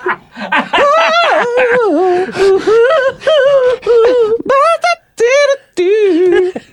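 A parrot sings a pop song melody in a shrill, reedy voice, holding wavering notes across several short phrases with brief breaths between them.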